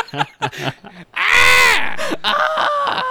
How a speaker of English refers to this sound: He just starts screaming.